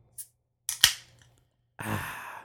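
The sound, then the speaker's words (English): A beer can cracked open: a small click, then a sharp metallic snap with a brief fizzing release, followed by a longer steady hiss of carbonation. No voices. “So yeah, let's crack this open and see what it looks like and see what it tastes like.”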